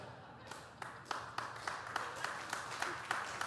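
audience clapping

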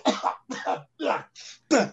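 coughing

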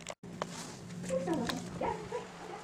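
dog whimpering and barking

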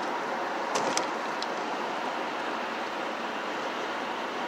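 car passing

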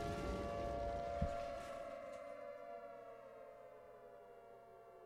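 air raid sirens whining

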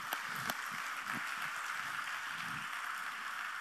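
audience applauding

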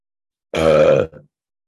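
burp

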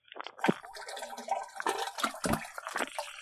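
toilet flushing

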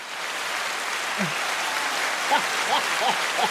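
round of applause

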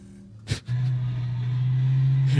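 car engine revving

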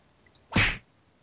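punch sound effect

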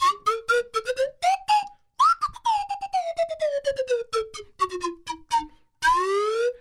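slide whistle being played

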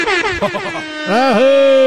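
air horn sound effect

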